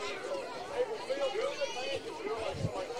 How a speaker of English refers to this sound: Crowds. Yes. I'm sure you can hear that. And we apologize in advance if you hear something you don't want to.